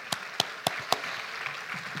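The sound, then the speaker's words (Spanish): Four sharp, evenly spaced hand claps ring out at a church, applause for a pastor of the church, followed by a soft wash of murmuring crowd noise as the applause thins out. No one speaks. “Un aplauso para mi tía.”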